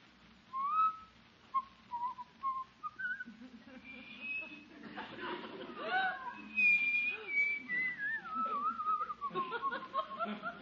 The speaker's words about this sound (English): You just going to sit there and whistle all night? Whistle?